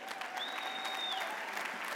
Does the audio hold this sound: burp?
no